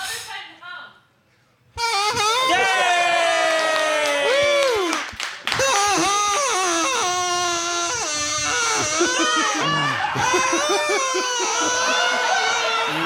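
A kazoo buzzes out a song after a short quiet start, its loud, nasal notes rising, falling and sliding into one another, with a couple of brief breaks in the melody.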